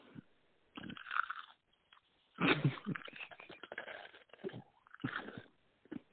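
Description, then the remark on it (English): Loud crunchy chewing of a snack, with irregular bursts of crackling bites and munching, and brief quiet pauses between mouthfuls. “Damn, it really is crunchy as fuck.”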